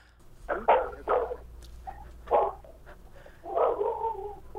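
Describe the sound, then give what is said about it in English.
A dog barks several times in irregular bursts, a quick pair of sharp barks, then a single bark, then a longer drawn-out bark or yelp, moderately loud against a low background hum, out in the country as someone walks by with their own dog. “Is this Tiffany with dogs? This is my dog.”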